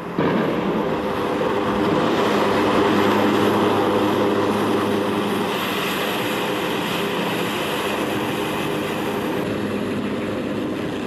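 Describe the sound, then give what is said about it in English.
A loud, steady roar of US Air Force military aircraft engines fills the air, swelling slightly early on and then holding constant as the planes pass overhead, with no voices. “and they can send in the precision bombing and the US Air Force aircraft in to go and bomb those troops.”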